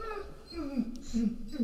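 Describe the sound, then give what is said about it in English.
A dog barks at the postman across the street in a run of whiny, wavering barks and yelps, pitch sliding up and down, moderately loud, with a couple of stronger bursts toward the end. “Now my dog's chiming in. He's mad that the postman is across the street.”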